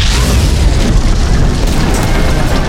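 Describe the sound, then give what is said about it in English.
A cannonball smashes in with a loud explosive boom, followed by a heavy, steady low rumble and crackling debris that stays loud for nearly three seconds, with no voices. “He was sealing the Luxon when a cannonball smashed into the forms.”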